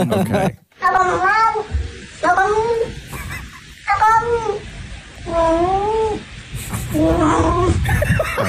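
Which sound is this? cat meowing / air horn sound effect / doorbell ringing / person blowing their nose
cat meowing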